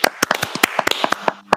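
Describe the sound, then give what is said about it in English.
A quick run of sharp hand claps, roughly a dozen in uneven succession, crisp and fairly loud, with a brief pause before a final pair; a round of applause for Western Bulldogs footballer Bailey Dale's game. “Start clapping.”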